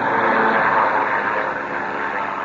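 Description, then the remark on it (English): A steady, loud airplane engine drone hums continuously with a rough, buzzing tone and slight swells in volume as a plane circles right overhead at night, its exhaust lights visible; no voices present. “That must be one of Sharp's planes.”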